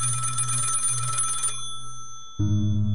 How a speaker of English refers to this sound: Just before 10 p.m., the phone rang at the Greenhaw residence.